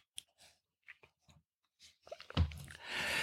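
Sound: sipping hot coffee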